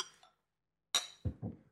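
beer glasses clinking

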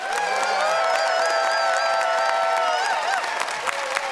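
audience applause and cheering

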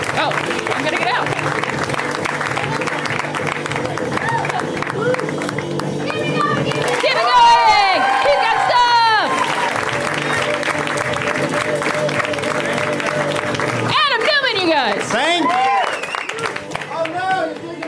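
audience applause

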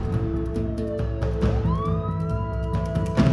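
police car siren

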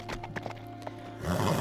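horse hooves and whinny

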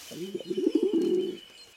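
pigeons cooing

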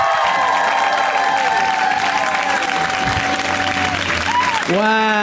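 audience applause and cheering

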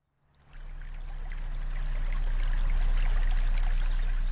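trickling stream water

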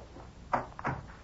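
door opening and closing

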